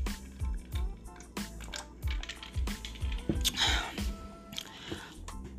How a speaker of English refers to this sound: let me take a little sip and throat getting a little dry.